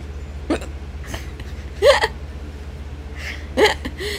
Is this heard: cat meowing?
no